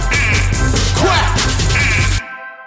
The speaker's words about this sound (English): I can't hear you quacking, y'all. Yeah. Come on, quack. Yeah. Quack.